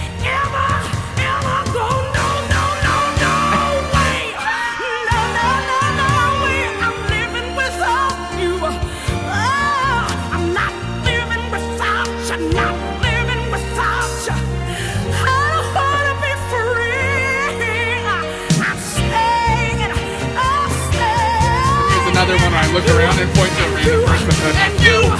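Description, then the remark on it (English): A loud crowd screams and cheers continuously over live music, the shrieks and shouts blending into a dense, sustained roar that swells slightly toward the end. “People are cheering at this point. People are screaming”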